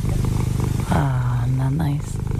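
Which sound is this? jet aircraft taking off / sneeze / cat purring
cat purring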